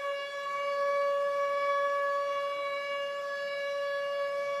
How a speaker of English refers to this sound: What would you do if, like, you was just minding your business one day and, like, you just heard those sirens?